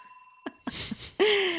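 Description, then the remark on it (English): A bell's clear ringing tone hangs and fades at the start, followed by soft knocks, a burst of rustling noise, and then a loud, abrupt tonal sound that cuts in near the end. “Had to ring the bell for my favorite razor that I just packed in my suitcase for my trip to Montana.”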